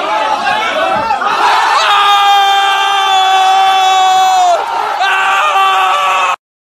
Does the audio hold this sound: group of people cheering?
yes